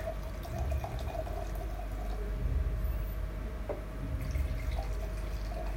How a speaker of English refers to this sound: And as you pour, it gets easier. See, I dripped. That's not good.